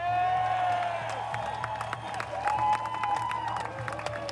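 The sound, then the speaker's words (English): A large crowd at a rally applauds and cheers for a woman speaker, steady dense clapping mixed with loud sustained whoops and shouts, with no speech over the noise. “Ladies and gentlemen, give her a huge round of applause.”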